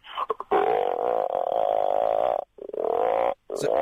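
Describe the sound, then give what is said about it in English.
A person imitates a frog croaking with their voice, a loud, drawn-out throaty rasp that runs in long sustained bursts with two brief pauses, preceded by a few short clicks. “It's a frog? Yeah.”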